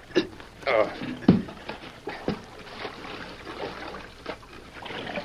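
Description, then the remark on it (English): Water splashes and sloshes in a few sharp bursts as a heavy box is lifted and dropped into a creek by men washing rock for gold, with running water and low voices or grunts in the background. “Help me lift this thing into the creek.”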